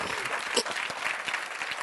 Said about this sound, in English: So even in your depression, God is there. Somebody get glad about that and clap your hands, would you?